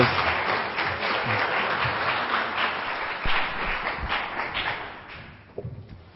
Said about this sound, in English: Let's give them a round of applause before they come.